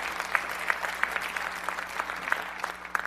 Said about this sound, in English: So your search team deserves applause for having done a marvelous job.